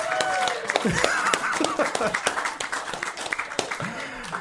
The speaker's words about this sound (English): We need Gabri's app. The sound effect app. Gabri's got a sound effect app. Ladies and gentlemen, everybody give a round of applause for Gabri's sound effect app.